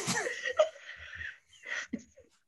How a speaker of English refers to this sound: Oh my god, everyone's got to hear me sniffling because I'm laughing so hard. I'm like crying.